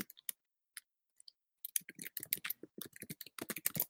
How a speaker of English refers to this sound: Let me mute myself so you don't have to hear the typing.